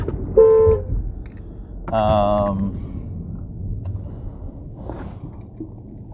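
Two loud car horn honks, a short blast followed by a longer one, ring out over a steady rumble of street traffic, then only the low engine noise continues.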